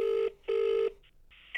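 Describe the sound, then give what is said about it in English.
An outgoing call's ringback tone: two steady electronic buzzing pulses in quick succession, the classic double ring heard through a phone line, followed by a brief faint electronic tone. “Oh, we're ringing.”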